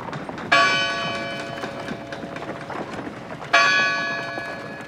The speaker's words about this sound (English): It's high noon. A dusty road cuts through the middle of a town. And down that road, at the end, is a small church. Its bell chimes 12 times.